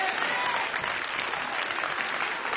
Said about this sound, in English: Come on, everybody. Clap your hands and say a good amen.